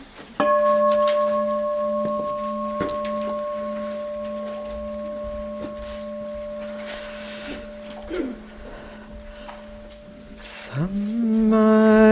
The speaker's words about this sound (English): I'm just going to sound the bell for a moment.